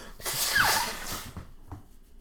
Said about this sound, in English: Oh, man, I got to blow my nose. Blow my nose break.